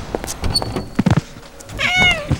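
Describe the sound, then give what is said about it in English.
A cat lets out a clear, drawn-out meow, its rising and falling tone ringing over a few soft clicks and rustles. “Shush, you silly moggy. You'll wake everyone.”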